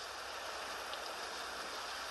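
A steady, even hiss of rain sounds played from an iPhone app pours down without pause, soft and continuous with no individual drops standing out, and no voices are present.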